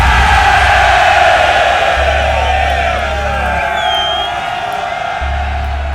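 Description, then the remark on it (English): A large crowd roars steadily throughout, a dense wash of cheering with occasional rising whoops cutting through, loud and sustained without pause. “Is that still the crowd I hear?”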